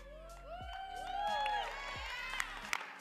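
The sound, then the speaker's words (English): A crowd of voices yells out their answers all at once, rating their day on a scale from 1 to 10, a jumble of overlapping high-pitched shouts that swells for a couple of seconds and then fades, followed by a few sharp claps. “But you could all scream it at the same time.”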